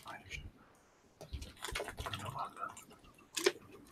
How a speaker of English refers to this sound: All right. Let me just drink a little bit more water because my throat is very dry.